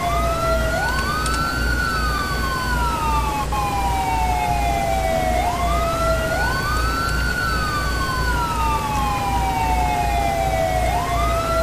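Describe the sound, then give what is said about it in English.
A police car siren wails loudly and continuously, sweeping slowly up and down in long repeating cycles over a steady low engine rumble, with no one talking. “It's freezing up so bad I can't turn off the sirens.”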